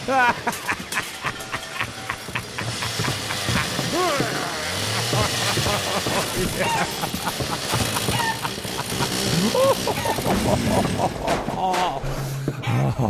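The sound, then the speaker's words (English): A loud, crowded flurry of chickens clucking and squawking, overlapping continuously for the whole stretch with a busy background of other noise underneath. “Get out of here, you stupid chickens.”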